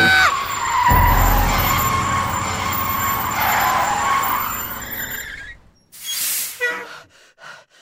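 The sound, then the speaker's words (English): A bus skids to a sudden stop just short of hitting a boy running across its path: a loud, sustained screech of tires over a heavy engine rumble for about five seconds, ending abruptly, followed by a short burst of hissing air and faint shuffling. “Bus, you almost kissed Louis's face.”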